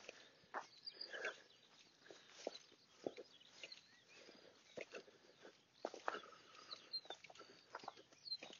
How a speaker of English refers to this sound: Sometimes it's nice just to have a bit of silence and listen to the bird song. The birds singing, pick up the stones, is what they're saying.